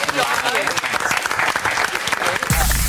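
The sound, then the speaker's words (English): Loud, dense applause from a studio audience fills the whole stretch, a steady wash of clapping with scattered sharp claps, cut off abruptly near the end by a burst of noise. “Going for cheap applause then.”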